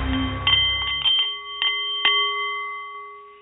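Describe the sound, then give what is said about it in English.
A Nepalese meditation bowl chimes with a handful of soft strikes in quick succession, its clear sustained tones ringing on and slowly fading into quiet. No voices. “The Nepalese Meditation Bowl is chiming, and that means it's time for The Art of the CEO”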